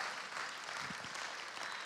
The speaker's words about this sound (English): Come on, let's give our God a round of applause because he has redeemed us.